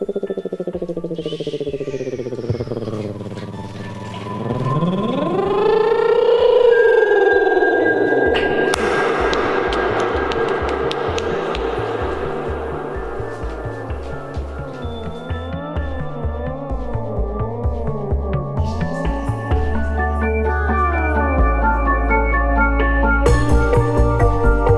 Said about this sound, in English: I call the Assembly of Silence moment, which involves creating atmospheric noises to signal that the conversation has reached its end point, and we throw it into a little bit of reverb, and that's the way we ride it out here.